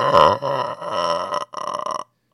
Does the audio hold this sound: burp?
yes